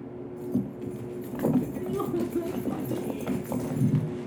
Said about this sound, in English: As you get back, you hear the keys going around in the ring again